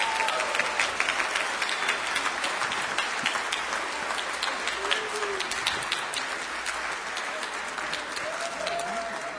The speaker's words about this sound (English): And as you applaud for them, I know they did it not for themselves, but to glorify God.